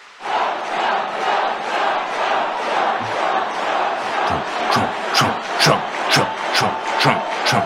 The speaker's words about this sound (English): And the crowd just loses its mind.